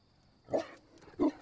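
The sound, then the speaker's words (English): A female dingo gives two short, low growls about half a second apart as she sticks her head in through a hole in a shack, moderately loud against a quiet background with no one talking. “The little beast stuck her head in and growled.”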